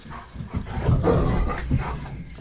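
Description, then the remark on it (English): A dog barks excitedly in a quick run of gruff, overlapping barks, steady in loudness for a couple of seconds, with no talking. “I'm sorry, my dog's going crazy.”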